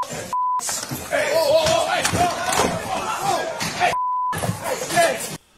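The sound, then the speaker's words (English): A woman screams, high and wavering, during a courtroom brawl in a Nevada court as a man jumps over the bench, over a loud, chaotic crowd scuffle with shouting and thuds, while two short steady censor bleeps cut in, one early and one near the end. “And you just hear her scream.”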